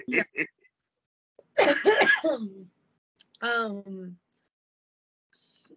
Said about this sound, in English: I shouldn't have even tried to smoke. I knew it was gonna make me cough.